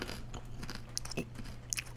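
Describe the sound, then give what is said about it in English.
Soft crunching of someone chewing a baby carrot: a few crisp bites scattered irregularly over a low steady hum, fairly quiet and with no talking. “So it's a soft crunch.”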